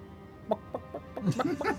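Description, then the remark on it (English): A voice imitates chickens clucking: a quick series of about seven short, throaty bok-like bursts, speeding up slightly toward the end, moderately loud. “A bunch of clucking sounds.”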